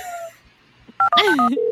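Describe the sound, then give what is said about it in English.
A quick burst of telephone keypad tones gives way to the start of a steady ringing tone on the line, clear, with no talking. “Oh, it's ringing.”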